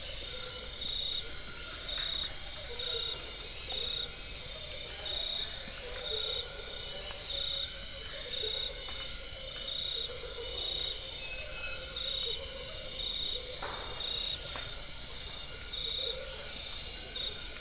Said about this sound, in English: The night insects are mesmerizing. A cricket gives brief trills from vegetation next to the trail, and strange frogs can be heard in the background with odd mumbling songs.